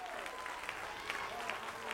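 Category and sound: crowd, audience clapping hands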